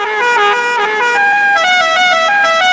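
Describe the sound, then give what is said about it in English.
A musical car horn loudly plays a short, bright melody of a song, its brassy notes stepping up and down in quick succession for about three seconds, with no voices. “the horn that Al Shervik's car makes, that sound”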